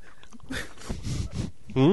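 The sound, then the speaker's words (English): Noisy chewing and crunching of a breadstick come in several irregular bursts, then a brief voice cuts in at the end. “Well, I can't take you seriously when you're just masticating.”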